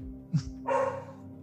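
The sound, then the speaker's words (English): A dog barks, two sharp barks in quick succession, the second louder and longer with a rough, harmonic tone, heard alone without any talking. “He barks at everything. He barks at his bone.”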